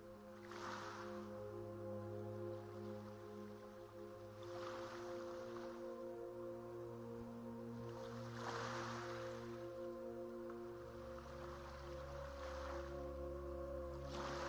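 Red Sea waters wash in at the shore roughly every four seconds, each a soft rushing swell, over a steady low mechanical hum like a boat engine. No one speaks.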